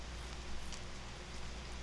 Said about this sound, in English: Watch out. It's raining.